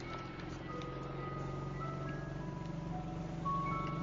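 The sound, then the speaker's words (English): An ice cream truck in a movie plays a tinkling jingle, a simple melody over a steady low engine rumble, continuous, with no voices. “Fucking ice cream truck.”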